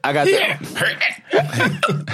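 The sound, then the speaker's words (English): Several short, abrupt hiccups break up a stretch of voiced, chuckling sounds from a person, coming in uneven jolts over a couple of seconds. “I got the hiccups.”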